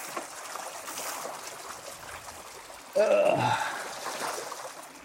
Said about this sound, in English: All right, we got our first river crossing here. That looks about 10 feet deep. Fast moving water.